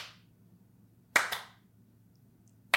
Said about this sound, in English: Let me just see what it's like to have a slow clap that never accelerates.